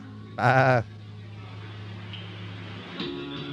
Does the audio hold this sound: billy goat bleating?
yes